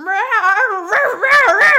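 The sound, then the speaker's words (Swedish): A person's voice imitates a cat in heat, producing a loud, wavering, drawn-out yowl that rises and falls in pitch, growing harsher and more strained toward the end, heard alone. “Har du varit med om en katt som löper någon gång?”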